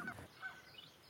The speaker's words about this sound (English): You can hear a few Canada geese, and there are some coots out there, mallards, a few great crested grebes out there as well nesting.